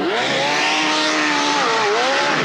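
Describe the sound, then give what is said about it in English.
A Mercury outboard motorboat engine roars loudly and steadily, its whining pitch wavering and briefly dipping as the boat runs onto a sandbar, with no voices. “And is it rugged? Watch as this Mercury approaches a sandbar.”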